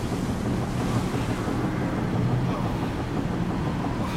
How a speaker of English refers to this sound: So if you're looking at this, this is a fisherman waking up on a beach in heavy, heavy storm, rain, sleet